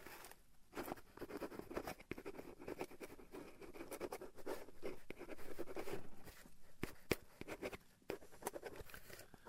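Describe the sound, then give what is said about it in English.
A really nice pen scratches steadily across the back of a piece of cardboard as an autograph is signed, a dry continuous scribbling with short strokes and brief pauses, quiet and without any talking. “I have a really nice pen here. Let me get it, and some paper here. Okay, right on this back of this cardboard.”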